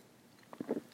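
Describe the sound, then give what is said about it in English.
A few soft sipping and swallowing sounds of water, brief wet mouth noises clustered near the end of a quiet moment with no talking. “Hold on, I need a sip of water.”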